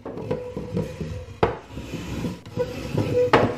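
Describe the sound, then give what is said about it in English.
Heavy wooden synagogue benches scrape and drag across a hard floor as a policeman pulls them out onto the street, with creaking squeals, a few knocking thuds, and a grinding rasp, with no voices. “And he saw a policeman pulling benches of the shul out onto the street.”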